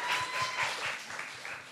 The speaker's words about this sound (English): Go on, that's it. Round of applause for our first volunteer.